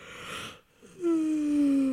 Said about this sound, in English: I had peanut butter and jelly, and now I'm yawning because I had carbs and also beer.